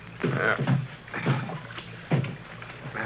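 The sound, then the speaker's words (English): A small boat is paddled through water, each stroke a swishing splash repeating every second or so in a steady rhythm, moderately loud, with no one talking. “You want me to paddle? All right.”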